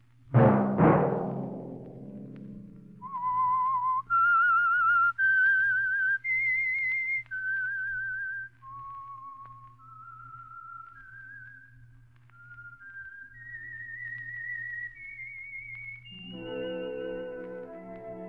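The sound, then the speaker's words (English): A solo whistled theme melody, used as a radio program's signal, of clear, sustained notes stepping up and down in a slow, eerie tune, with a soft low hum underneath, ending as a brief orchestral chord swells in. “Let that whistle be your signal for the Signal Oil program, The Whistler, each Monday at 9.”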